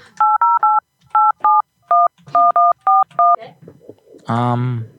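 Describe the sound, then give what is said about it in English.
A SIP phone number being dialed: about a dozen short, evenly paced touch-tone beeps in quick groups, followed by a brief burst of voice. No busy signal is evident after the dialing. “Busy again. The same shit. Busy here on the SIP.”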